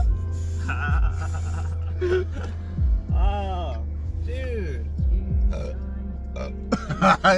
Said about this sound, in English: Yo, smoke came out of that burp.